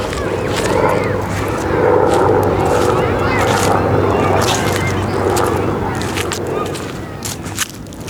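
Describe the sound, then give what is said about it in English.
A plane circles overhead above a lawn in Ottawa on a fine autumn day, its continuous engine rumble filling the background, while faint distant voices of children playing on rides and occasional rustling footsteps on fallen leaves come and go. “Children frolic on the rides in the distance, and a plane circle overhead.”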